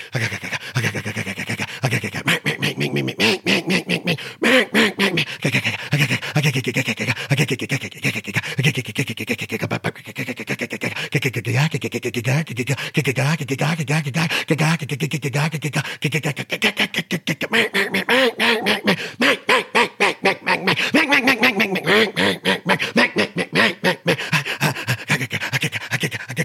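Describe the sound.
A duck call blown in a long, unbroken stream of rapid quacks and raspy chatter, mimicking a group of ducks sitting on water, loud and steady with no talking; the caller breathes in and out throughout without long breaks.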